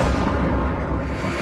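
A deep, thunderous rumble of explosions from Russia's invasion of Ukraine rolls on without pause through the Ukrainian capital, heavy and booming with a reverberant, echoing quality, carrying across a wide urban space. No voices are heard.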